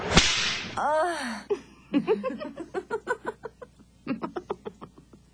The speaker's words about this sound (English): I don't know if that has a sound effect or not. It might. I think more of like a whip sound.